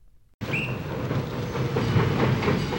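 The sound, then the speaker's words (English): A train of up to 14 cars, loaded with travelling spectacles and bound for Boston, rolls past, its cars rattling and clattering over the rails in a steady, loud rumble that starts abruptly, with a brief metallic squeal near the beginning. “The animals were rounded up, costumes packed away, and the spectacles were loaded on multiple trains, up to 14 cars each, to head for Boston.”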